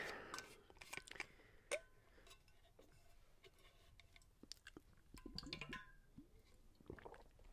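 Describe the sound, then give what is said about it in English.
Someone takes quiet sips of water, with small wet mouth clicks and gulps scattered irregularly over several seconds and no talking. “Quick water break.”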